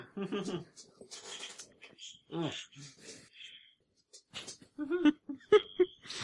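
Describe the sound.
A dog pants and shuffles around, its breathy huffs and a few soft whimpers coming in short bursts while people talk and laugh over it.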